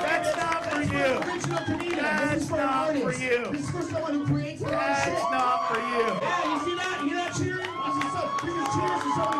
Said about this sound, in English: Yeah, you see that? You're not cheering. Those are cheers. They saw you perform and they like you.